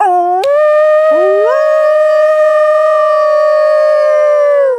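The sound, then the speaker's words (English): A person imitates a wolf howl: a brief opening note breaks off, then a loud, sustained wavering tone swoops upward and holds steady for several seconds before fading. “There are a lot of melodies in the wolf sound too.”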